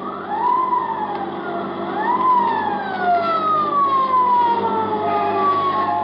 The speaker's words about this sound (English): And it ain't long before I hear that old familiar sound, a motorcycle siren. Sure enough, a boy in a blue suit pulls alongside and gives me the wig-wag with his glove.